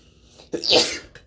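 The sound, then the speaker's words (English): A single sharp sneeze bursts out, a quick inhale followed by a loud, breathy explosion that fades within about half a second. “Bless you. Bless you, sir.”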